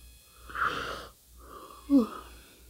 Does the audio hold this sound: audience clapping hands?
no